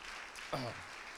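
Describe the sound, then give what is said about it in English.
A church audience applauds the Lord in a steady, dense wash of clapping, with a single voice briefly calling out partway through. “So come on and give the Lord one more good round of applause.”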